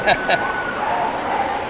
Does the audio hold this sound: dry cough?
no